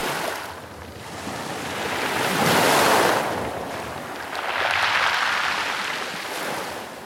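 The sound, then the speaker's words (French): Sea waves break on the shore in two broad surges, each swelling to a loud wash of hiss and rumble before fading back. A steady background roar continues between them, with no talking. “Après avoir traversé toutes les montagnes, elle arriva au bord de la mer.”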